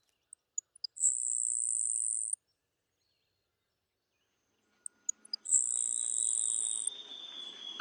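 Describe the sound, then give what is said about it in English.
A grasshopper sparrow sings twice, each song a few soft ticking notes followed by a thin, high, insect-like buzz lasting over a second, with a long quiet pause between. “Now, the faint-voiced grasshopper sparrow and the white bellbird.”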